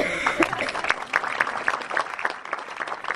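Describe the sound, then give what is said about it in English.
A crowd claps steadily, a dense patter of many hands with scattered sharper claps standing out, sustained at an even level for a few seconds. “Just give him applause.”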